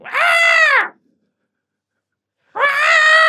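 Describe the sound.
A voice imitates an ape screeching: two loud, shrill, strained cries, each under a second long, separated by a short silence.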